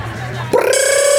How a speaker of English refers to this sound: Right before you do, though, the bell rings.